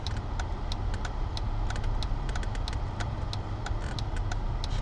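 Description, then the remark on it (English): A car's turn signal clicks in a steady, rapid rhythm, recorded with a mic held up to the blinker, each sharp tick crisp and bright, over a constant low rumble of an idling engine. No one speaks. “Guys, hear that blink? Let me hold the mic up to the blinker real quick.”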